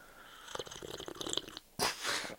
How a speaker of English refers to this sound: Oh, that was a really nice sip, actually. And yeah, these are good mics. You should really use them for a good purpose. Close up. Sipping.